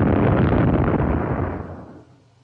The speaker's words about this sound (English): Not thunder, surely. It sounded more like an ancient cannon.